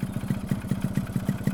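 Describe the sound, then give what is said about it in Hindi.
A car engine runs with a steady, low, rhythmic throb as the car stops in front of a school, its even pulses repeating quickly at a constant moderate loudness, with no voices present. “School के आगे गाड़ी रुकती है।”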